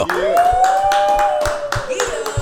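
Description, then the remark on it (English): A small audience at a cafe claps in a steady rhythm, the sharp claps fairly loud, while a long sustained whistle-like tone rises and holds above them. “We're at Brewers Cafe. Clap it up.”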